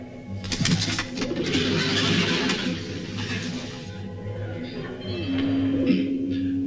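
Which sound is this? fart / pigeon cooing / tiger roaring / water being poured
pigeon cooing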